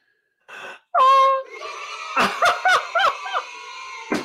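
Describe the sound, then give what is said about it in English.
A soundboard clip of children screaming and cheering excitedly: a sharp high shriek, then a run of short, bouncing yelps and squeals, loud, over a few seconds. “The kids screaming, yay.”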